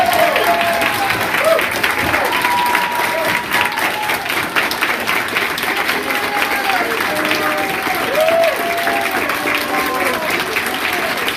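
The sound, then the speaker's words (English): Sustained applause from a large audience at the graduation exercise of Team 203 on a Sunday afternoon, steady and loud throughout, with scattered cheers and indistinct voices mixed into the clapping. “So y'all give these folks a big round of applause.”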